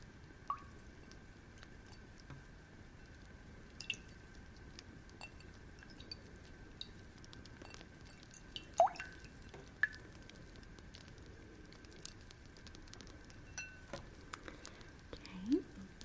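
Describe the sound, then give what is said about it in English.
Quiet, scattered drips and small splashes of water in a container as water and snow are used in a small experiment, irregular plinks and soft squishy sounds spaced out over a faint background hiss, with no talking. “I wanted to try something with snow. I got us some water.”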